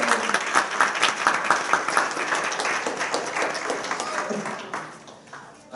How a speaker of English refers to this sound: You guys make a big hand round of applause for these folks.